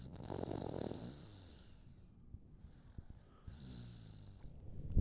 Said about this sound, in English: He started snoring.